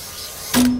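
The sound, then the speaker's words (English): A mirror-glass cutting machine starts up partway through with a sudden burst of hissing noise, and a steady low hum carries on under it to the end. The machine slices giant sheets of reflective glass into little pieces. No one speaks. “You see here, this is the machine that cuts the mirror.”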